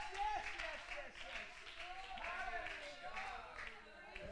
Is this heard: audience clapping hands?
yes